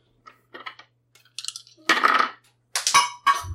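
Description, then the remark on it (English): A dropped die clatters and bounces on a hard table, a quick series of sharp clicks and rattles that end in a brief skittering roll, with no talking. “That's a five, and I dropped the other die, so I'm rolling again.”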